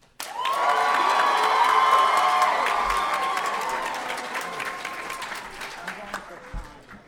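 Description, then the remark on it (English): A crowd bursts into loud applause with whoops and high-pitched cheering, the clapping dense at first and then gradually thinning out and fading over several seconds. “All right, round of applause, everybody.”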